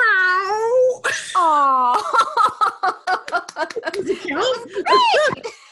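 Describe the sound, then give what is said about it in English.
A person imitates a cat with two drawn-out, wavering meows, followed by a burst of laughter and chuckling from other people. “The last thing I'm going to ask you to do is give me your best meow.”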